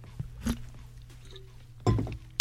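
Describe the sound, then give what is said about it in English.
Someone chews ice, with sharp crunching bursts at irregular intervals: a crack, a longer grinding crunch, then a final bright snap, over a low steady hum. “Ugh, an ice chewer.”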